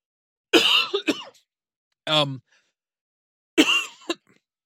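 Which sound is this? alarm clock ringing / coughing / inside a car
coughing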